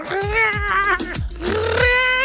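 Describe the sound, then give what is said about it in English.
A person imitates their cat chattering at a magpie that has landed in the grass while the cat looks out the window, making a fairly loud, wavering trill-like vocal sound that pulses and wobbles for about two seconds without any other talk. “And a and a magpie land in the grass and she goes...”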